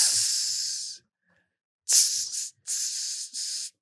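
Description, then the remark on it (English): Water poured over hot rock in a dry sauna sizzles and hisses in loud, bright bursts: one long hiss, a pause, then three shorter hisses in quick succession, with no voices. “Let me pour some water over the hot rock.”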